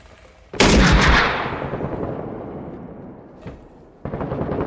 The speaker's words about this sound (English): Oh, he's shooting from the side.